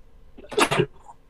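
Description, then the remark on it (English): A single sneeze, with a brief breathy intake followed by a sharp, bright burst that quickly fades into quiet. “Bless you.”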